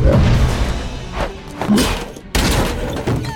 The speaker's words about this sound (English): So Ahsoka comes in there and just force pushes the two droids, smashes them up against the wall.